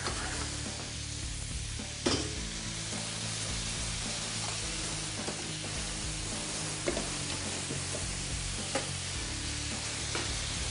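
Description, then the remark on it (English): Steady, hissing sizzle of food frying in a hot pan, with occasional sharp clicks and scrapes as a utensil stirs through it. No voices. “And you just cook them until they just get plump. Look, they're almost done.”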